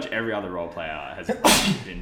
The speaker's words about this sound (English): Bless you.